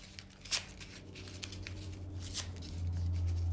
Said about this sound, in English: Now, I want you to take that piece of paper. I want you to tear it up.